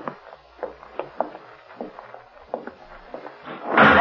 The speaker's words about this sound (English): Someone closed the door behind us. Killer. He was waiting in back of it.